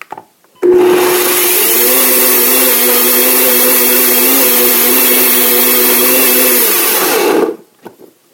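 A BlendTec blender is pulsed, kicking on abruptly and running in one loud, steady whirring roar with a low motor hum for about seven seconds, then cutting off, followed by faint clatter.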